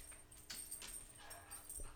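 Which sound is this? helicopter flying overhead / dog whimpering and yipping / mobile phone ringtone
dog whimpering and yipping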